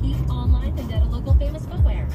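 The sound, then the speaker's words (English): A steady low rumble of a car interior on the move, with road noise droning throughout and muffled, indistinct voices murmuring faintly underneath. “I'm going to try to do this without crashing my car.”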